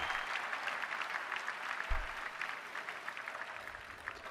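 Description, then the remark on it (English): An audience applauds steadily, a dense, even patter of many hands clapping that holds at a moderate level for the whole stretch, with no clear voices over it. “Clap, Chris.”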